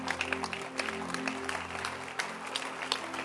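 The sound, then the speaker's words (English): An audience claps steadily, many hands creating a dense, continuous patter of applause at moderate volume, with a low sustained hum underneath and no speech, in answer to a call to clap their hands. “Clap your hands.”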